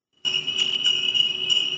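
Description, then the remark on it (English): Sleigh bells jingle in a steady, bright, high-pitched shimmer that starts abruptly and keeps going, with a few louder shakes rising above the continuous ringing. No voices are heard. “I enjoyed some sleigh bells, actually. Can you keep that running in the background?”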